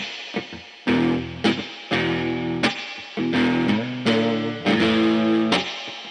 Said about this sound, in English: This is why today I chose the pedals I did. Mm-hmm. Because it does seem like with these old guitars that maybe don't hold the tune exactly. Yeah. People like their reverb and distortion.